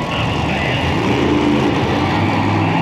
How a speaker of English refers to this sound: The guy from the TV show is going really slow in that monster truck. And okay, I kind of was. But they are very hard to drive. You have to steer the front and the rear wheels independently.